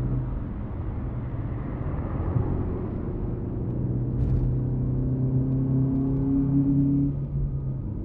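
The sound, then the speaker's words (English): A car engine rumbles steadily, its pitch climbing as it revs and accelerates over several seconds before easing off, with no voices present. “My car only got as far as the Vatic Row, so I left it on a neat little corner and took a stroll down its main street.”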